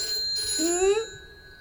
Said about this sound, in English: The phone's ringing.